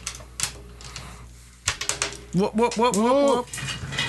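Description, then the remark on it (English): A quick flurry of sharp, hard clicks and rattles as a player's dice, dropped during a tabletop role-playing game, clatter across a hard floor, followed by someone speaking with a rising, drawn-out voice. “Oh, which of your dice did you lose on the ground?”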